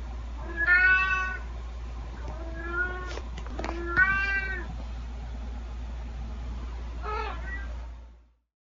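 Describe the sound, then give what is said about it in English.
A domestic cat meows four times, drawn-out and wavering, clear, with short pauses between calls over a steady low background hum, running through a room as it meows. No one speaks. “My cat's meowing just then just had a little like purple streak going through the room as she ran through and meowed.”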